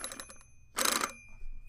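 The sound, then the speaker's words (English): A toy train phone rings with a bright, tinny electronic trill: a quick stutter of rings, a pause, then a louder buzzing burst of ringing before it cuts off. No one talks. “Now, tell me about your train phone.”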